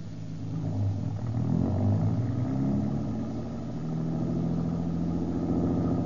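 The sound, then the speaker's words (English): A car engine rumbles steadily and revs as the vehicle pulls away up the street, a continuous low mechanical drone with a slight rise in pitch, moderately loud, with no voices. “Hop in. Where do we go now? Just up the street away, out of the general's line of vision.”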